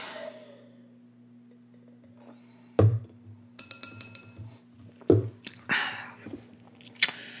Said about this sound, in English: Okay. Let me take a sip.